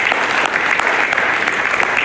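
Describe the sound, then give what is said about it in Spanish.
Steady, dense applause from a large church audience, given to the Lord, many hands clapping at once in a continuous loud roar without a break. “Denle el mejor aplauso al Señor, que la gloria al Señor Jesucristo.”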